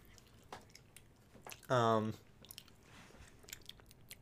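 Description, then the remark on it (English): Quiet ASMR chewing with scattered soft wet clicks and small crunches, broken briefly in the middle by a short, louder voiced hum. “As the title no doubt advertises, this is an episode of purely ASMR chewing.”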